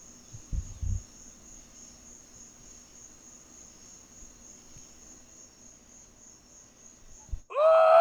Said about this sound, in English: Enjoy those crickets.